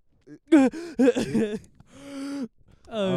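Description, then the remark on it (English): A person gasps for air after a dry swallow: a quick run of strained, voiced gasps and groans, then a long raspy breath and one more drawn-out groan. “You're like, you like, you have to gasp for air.”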